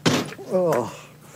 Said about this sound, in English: Yeah, keep kicking the door, stupid.